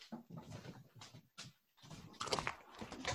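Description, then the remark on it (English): A dog named Bubs, scared during a thunderstorm outside, scratching, with a run of irregular scraping and rustling bursts separated by brief pauses, fairly loud and with no one talking. “It's my dog. It's actually thunderstorming out, so he was scratching.”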